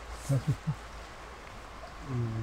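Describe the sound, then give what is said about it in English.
A puppy drinks water: three quick, wet lapping sounds in a row, followed moments later by a person starting to speak. “Puppy water, sorry. Sorry, Kestrel interrupted.”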